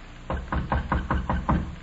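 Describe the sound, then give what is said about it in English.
A steady series of about seven firm knocks on a door, evenly spaced, with a dull, solid thud to each rap and no voices. “Knock on the door.”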